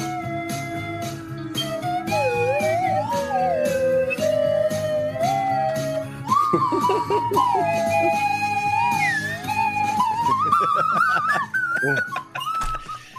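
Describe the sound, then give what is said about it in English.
A slide whistle plays a solo, its pitch gliding smoothly up and down in swoops and wavering runs over a steady low backing, climbing higher toward the end. “Slide whistle solo.”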